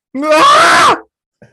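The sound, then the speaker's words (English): A person lets out a single loud, raw, visceral and angst-filled scream at the state of their performance the day before. It lasts nearly a second, strained and harsh, rising then bending down in pitch before cutting off, followed by a brief faint sound. “Which one of us can do the best visceral and angst scream at the state of our performance yesterday?”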